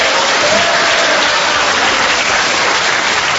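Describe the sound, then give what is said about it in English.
A studio audience breaks into a steady round of applause, dense clapping that fills the whole moment at an even, fairly loud level without easing off. “The next day, I rose with my manservant, Grimbling, whom I mention only to get a cheap round of applause.”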